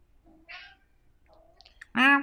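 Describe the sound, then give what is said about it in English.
A cat named Goose meows a few times: a soft, high mew, a quieter murmur, then one loud, harmonic-rich meow at the end. Nobody talks. “Meow. Goose has a lot of beef with that.”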